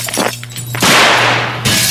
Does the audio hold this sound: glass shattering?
yes